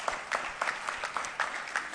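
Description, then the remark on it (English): A crowd of people clapping steadily in applause for God over a fundraising total, a dense patter of overlapping handclaps at moderate volume with no voices rising above it. “That is worthy of an applause for God, right?”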